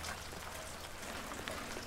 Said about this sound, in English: The rain starts really pouring down on me and Jill, but she doesn't head for cover.